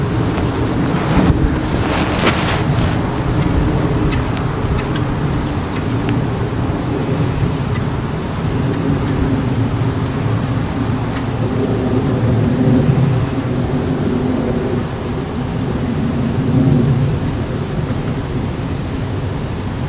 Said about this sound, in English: So that plane that just flew over, I'm getting its stats right now.